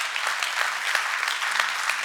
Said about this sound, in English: If you're saved and you're happy, let's give him a good clap and say thank you.